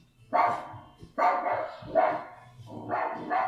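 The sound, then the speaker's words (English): An Alexa smart speaker plays the 'Jurassic Bark' sound effect: a dog barks four times at a steady, evenly spaced pace, each bark loud and full, with no one talking over it. “Okay, here's Jurassic Bark.”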